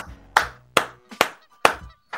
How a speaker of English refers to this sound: Oh, you clap for that one.